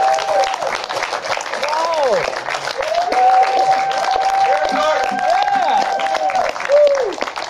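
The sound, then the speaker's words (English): A crowd applauds steadily and loudly for several seconds, the dense clapping mixed with cheers and shouting voices rising over it, welcoming actor Barry Gordon, star of Out of It, who is in the audience. “Barry Gordon, the star of Out of It, is in the house. Let's give him a big applause.”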